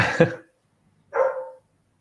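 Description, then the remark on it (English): A dog barks twice, a sharp bark followed about a second later by a more drawn-out, tonal one, moderately loud with silence around them and no talking. “I got our dog barks in the background.”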